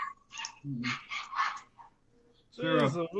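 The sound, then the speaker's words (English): Dogs across the way barking and snarling as they try to fight each other, in a series of rough, overlapping bursts, ending in a sharper yelping outburst, like an agitated scuffle. “Yeah, those are the psycho dogs across the way.”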